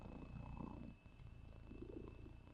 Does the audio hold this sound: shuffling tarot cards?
no